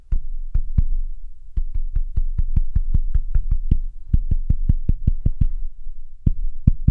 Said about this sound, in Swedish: Du vet, mina ungar gör det här till exempel. De tycker att det är en rolig lek, att man knackar en låt i typ köksbordet. Och sen, ja, så, det, och sen så ska jag gissa vad det är för något. Okej, lyssna här då.